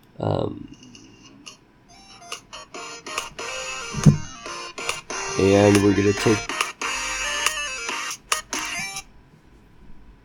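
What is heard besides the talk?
keys jingling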